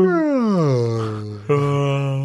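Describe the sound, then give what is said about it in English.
A voice imitates the fart of someone who has taken amyl, a long, loud, buzzy drone that slides downward in pitch, then breaks into a second, steady low rasp lasting about a second. “Can I just say very quickly what it sounds like when, what I imagine someone farting who's just took amyl would sound like?”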